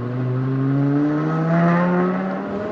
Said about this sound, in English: Here we go. Got the big tri-exhaust on the back. This is a V10, right? Yeah.